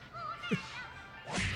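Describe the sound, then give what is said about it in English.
A sharp, whip-like slap cracks out once near the start as an egg roll smacks an old lady's face and knocks her dentures out of her mouth, followed by a brief burst of louder clattering noise at the end, with no voices. “The egg roll slapped her dentures out of her mouth.”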